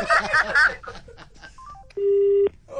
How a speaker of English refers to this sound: She put the phone down. She put down.